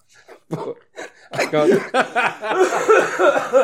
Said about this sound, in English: Oh, that's a smoker's cough if ever I heard one. That's a dying cough.